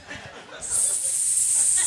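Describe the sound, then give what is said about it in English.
A person in a stand-up comedy act voices a sustained, sharp hiss like a snake, starting after a brief moment of quiet breathy sound and holding steadily until the end. “Like a snake trying to pronounce Tonya.”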